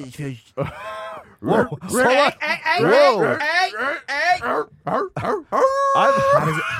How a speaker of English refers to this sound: It's a Scooby Doo talking dog.